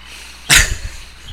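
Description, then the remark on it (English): A single short burp breaks out suddenly with a loud, raspy burst, then trails off into a few low, croaky pulses before fading to quiet. No one talks. “Okay, I'll leave that one burp in.”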